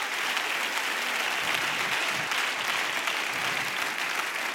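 An audience claps hands unto the Lord in sustained, dense applause, a steady wash of many overlapping claps at an even loudness without pause.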